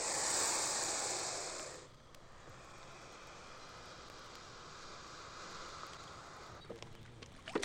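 An American alligator gives a loud, breathy hiss lasting nearly two seconds, then a low rustling lull, ending in a few sharp cracks as its jaws snap shut.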